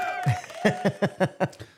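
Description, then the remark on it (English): A short burst of clapping welcoming a guest, about six evenly spaced claps in a quick, steady rhythm, following a brief high tonal sound like a cheer or whoop at the start. “Sorry, I should give you a round of applause.”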